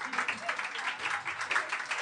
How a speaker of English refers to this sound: And when the crowd applauds for moving on, that means it's... Yeah. Like, they're moving on.